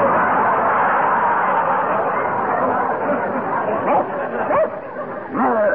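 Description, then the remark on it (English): A hypnotized man's voice imitates a big, brown Airedale dog barking, giving a few short, rising yelps toward the end over a steady, busy background murmur. “you are an Airedale. A big, brown Airedale. Speak.”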